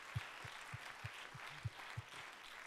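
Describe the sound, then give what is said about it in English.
A church audience clapping together during a worship service, a dense wash of many hands with a steady beat of soft low thumps roughly three times a second, with no voices. “Give him one more good hand clap.”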